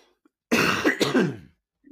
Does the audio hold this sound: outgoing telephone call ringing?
no